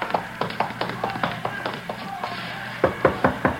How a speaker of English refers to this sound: Yeah, around back of the stand here. Knock on the door.